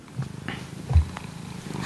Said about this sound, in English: It's a good purr to make.